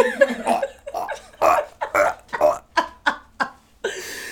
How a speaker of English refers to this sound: Hey, do you want a hot dog flavor burp? No, I know. Because it's coming. She's working it up like a cat ready to throw up.